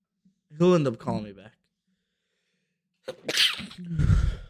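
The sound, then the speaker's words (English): A sharp, forceful sneeze bursts out near the end, with a quick inhaled buildup before it; earlier a voice makes a brief vocal sound, then a pause of silence. “Bless you. That was intense.”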